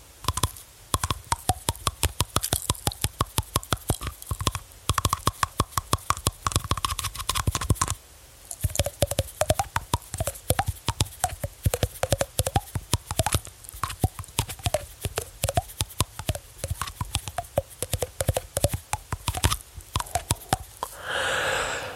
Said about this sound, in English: And sorry, this is so weird and ASMR. This is me tapping my nails on my teeth.